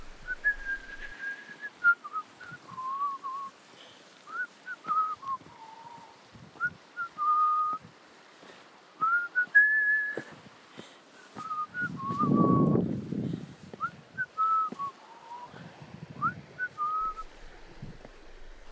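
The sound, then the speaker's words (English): A person whistles a cheerful melody alone while hiking in a quiet canyon in Moab, clear, in short lilting phrases that run steadily throughout, with a brief low rumble partway through. “I had a quiet canyon to myself, and as I walked, I realized I was whistling out loud.”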